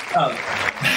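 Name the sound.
applause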